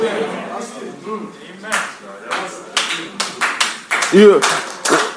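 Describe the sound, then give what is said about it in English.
An audience claps hands in loose, uneven bursts, sharp claps landing irregularly for several seconds while a raised voice calls out among them. “You can clap hands for that because it's the truth.”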